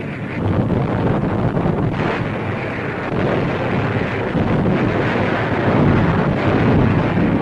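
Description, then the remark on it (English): The first wave of Marines in amphibious tractors and landing boats heads toward shore at Tarawa under a heavy naval barrage, heard as a loud, steady engine roar and rushing wind-like noise blending into one continuous rumble, without clearly separate blasts. “The first wave of attacking Marines starts toward shore in amphibious tractors and landing boats under a terrific naval barrage to shield them from enemy fire.”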